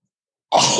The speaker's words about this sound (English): So I get a sneeze.